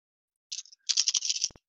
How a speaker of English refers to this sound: Sorry, I'm digging around in this bag for no reason. Oh, okay. No reason. I'm not digging in my bag for any other reason except for that I like the noise of dice clicking and clacking.